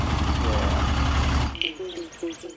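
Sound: truck engine idling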